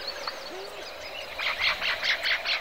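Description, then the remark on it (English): A dense natural chorus of calling frogs and birds in a healthy habitat, with a rhythmic series of bright, pulsing calls rising over a steady layer of insect-like trills and chirps. “And then the reptiles and the amphibians join the chorus, establishing other niches. Then come the birds.”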